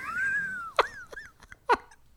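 A dog whimpers in reaction to high sung notes: a long, high, wavering whine, then a couple of sharp yelps with short whiny cries between them. Nobody speaks.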